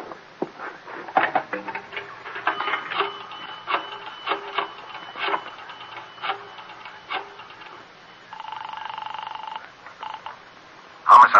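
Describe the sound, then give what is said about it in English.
Rapid bursts of mechanical clicking as a telephone in the back of a delicatessen on 24th Street is dialed, like a rotary dial being turned and released several times, followed by a steady electronic tone on the line and a sharp sound at the end. “Now, look, I'm going in the back and use your phone.”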